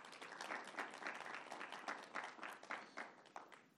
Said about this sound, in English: Let's give it a hand clap.